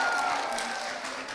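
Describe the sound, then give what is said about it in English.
A dense wash of crowd noise from a live show audience in Australia, steady and fairly loud, with many people clapping and cheering together to music throughout the short stretch, and no single voice standing out. “Come on, let's clap, let's cheer, let's get loud.”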